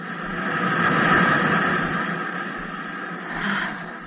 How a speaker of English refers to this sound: I've always loved the sound of the surf. I think there's music in it.